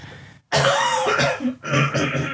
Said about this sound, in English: We've got all this fancy tech when you press buttons and you cough and it's not supposed to. Sometimes I just can't. I can't get to it fast enough. Sometimes it's either that or I pass out. I've had this lousy cough.